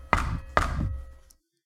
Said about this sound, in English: Did you guys hear that? Did anybody hear that noise? Is somebody at the door?